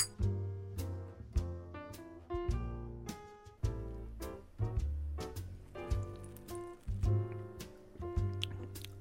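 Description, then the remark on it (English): Whiskey sloshes and swirls in a glass as it is agitated and aerated for tasting, with repeated sharp clinks and taps ringing out at an uneven rhythm, fairly loud, with no talking. “So as always, those of you playing at home, we're agitating, we're smelling, we're aerating, just to try to get as much as we can out of this spirit”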